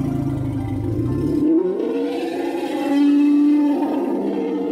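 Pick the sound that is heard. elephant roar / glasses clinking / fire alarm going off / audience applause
elephant roar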